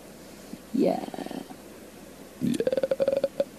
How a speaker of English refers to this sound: Kind of sounded like a burp for some reason. Oh, yeah. A very agreeable burp.